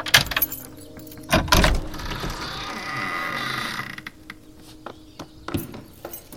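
An ancient brass key rattles and clicks in an old lock, a heavy clunk follows, then a long rough creak as the heavy double door of Willow House swings open, ending with a few sharp knocks, without voices.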